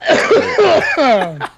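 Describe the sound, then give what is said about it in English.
A man coughs and chokes in a run of strained, voiced, gasping bursts, loud, with wheezing pitch slides between hacks and a final short cough. “He just coughs to death with a Smokey the Bear shirt on.”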